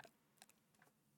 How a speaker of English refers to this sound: because I was too busy typing and I can't multitask